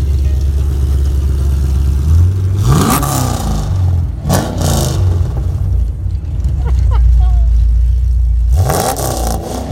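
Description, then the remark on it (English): A Camaro's engine idles with a deep exhaust burble, then revs sharply three times, each rise climbing and falling back. Loud throughout, with a rough, rumbling low end. “Can we get a little closer to it? Yep. So we can hear it burble?”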